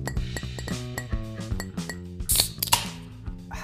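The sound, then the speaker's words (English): Glasses clink together in a toast, a few bright, ringing taps bunched near the end, heard over a steady tonal musical background with no talking. “Cheers.”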